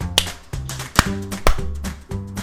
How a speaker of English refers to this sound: My first one was better. Oh my god. Who was that last one? I don't know. I clapped when you said one. It was bad.